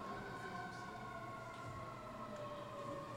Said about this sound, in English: We'll just wait for the siren.